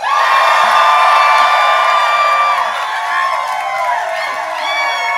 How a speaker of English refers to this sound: The ship is literally rocking back and forth, so if you guys could all make a really loud cheer that we can pick up on the recording, do it now.